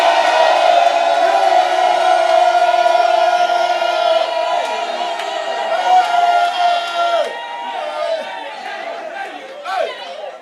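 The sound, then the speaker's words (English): An audience shouts unto the Lord together in a loud, sustained roar of many voices, holding steady for several seconds before breaking into scattered, uneven calls and cries near the end. “Shouting is good.”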